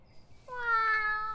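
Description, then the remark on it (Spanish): A single drawn-out meow from a cat behind a window, clear, rising then slowly trailing off, with no one speaking. “ahí está Draco detrás de la ventana. Buenos días, gatito.”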